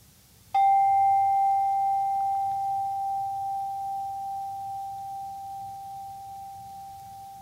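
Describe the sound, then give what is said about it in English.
A single meditation bell is struck once to signal the end of the meditation. Its clear, pure tone rings on and slowly fades over several seconds against a quiet background. “Next bell that you hear will signal the end of the meditation.”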